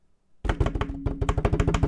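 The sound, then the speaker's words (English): A quick hand-tapped drum roll on a hard surface, made to announce a raffle winner, rapid knocking strikes that start abruptly and speed up into a steady, loud patter for over a second. “And I don't know how to do like a crowd sound, so we should just a drum roll.”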